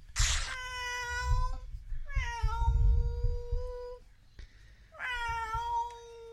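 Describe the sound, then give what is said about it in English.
A person imitates a cat, letting out three drawn-out, convincing meows separated by short pauses, each one loud with a whiny, falling tone, sounding very much like a pet cat named Panda. “I can do cat really well.”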